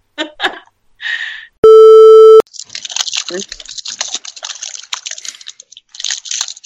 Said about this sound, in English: Everyone get your hard candy out of your wrappers right now. All right. Who started a small fire? Do you know how far that, it's wax paper, do you know how far that was from my microphone? I was curious as to whether you'd hear it or not.